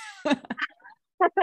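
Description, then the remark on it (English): A few short, muffled cough-like bursts, held back by someone trying hard not to cough, with brief pauses between them and a couple of sharper catches near the end. “No, I'm trying really hard not to cough.”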